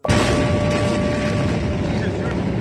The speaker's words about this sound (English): On this Tuesday night, an enormous explosion blasts through Beirut. Horrific disaster. Rubble everywhere. Buildings blasted open.